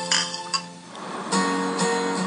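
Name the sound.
glasses clinking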